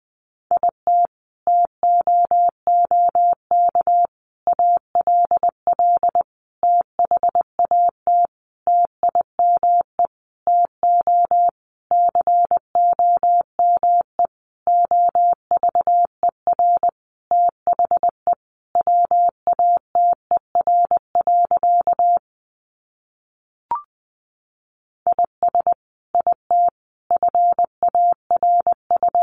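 Morse code at 20 words per minute, sending practice sentences built from the top 300 words: a single steady mid-pitched tone keyed into quick, crisp dots and dashes, running continuously apart from a brief pause near the end, with no voices.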